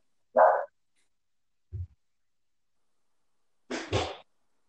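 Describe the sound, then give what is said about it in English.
A dog gives a couple of short, sharp barks at a package delivery, spaced a few seconds apart, with a soft low thump in between and silence around them, no talking. “What the hell are Pass. my dogs doing, bro?”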